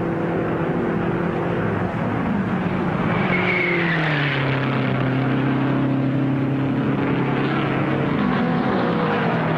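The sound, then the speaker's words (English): Loud, continuous roar of racing car engines during a race, their whining pitch rising and then dropping as cars speed past, including rookie McElreath in car number 15 passing Sutton and Ward to challenge Boyd in car number one, with a steady engine drone throughout and no voices. “McElreath, the rookie in number 15, charges past Sutton and Ward to challenge Boyd in car number one.”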